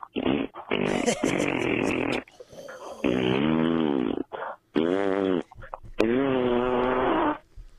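A string of loud, drawn-out fart noises, about four long buzzy blasts with a wobbling, sputtering pitch and short pauses between them.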